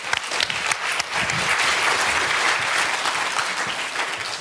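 An audience claps steadily for several seconds, a dense, even wash of many hands with a bright, crackling texture that holds at a fairly loud level throughout.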